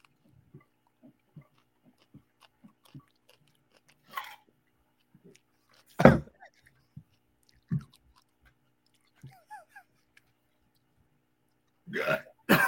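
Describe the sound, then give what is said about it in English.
Someone chugs at least a water bottle's worth of raw egg and water mixture in a run of soft, rhythmic gulps and swallows. These are broken by a few loud, harsh splutters or gasps, with no talking. “I got like at least a water bottle full of egg water mixture in here.”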